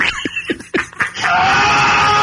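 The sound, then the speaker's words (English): A few short, strained vocal bursts give way to a loud, sustained man's scream that holds steady for about a second, harsh. “I would be like that sound a rock plays all the time. That fucking guy just screaming.”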